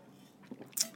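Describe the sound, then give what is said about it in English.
Someone takes a drink of water: soft, wet mouth sounds build to a sharp sip or gulp, followed by a quick swallow and breathy release, with no talking. “Delicious water.”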